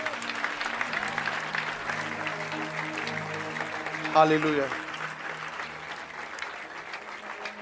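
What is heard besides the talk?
audience clapping hands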